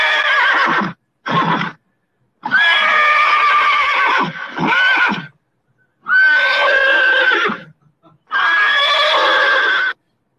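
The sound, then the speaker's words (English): A horse neighing sound effect: a horse neighs loudly in several long, quavering whinnies separated by short pauses, with no other sounds around it. “That's, by the way, that's the horse neighing sound effect, in case you're wondering.”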